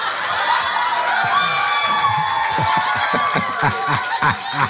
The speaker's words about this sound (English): So you have no idea what this is. You have no idea why there's people cheering.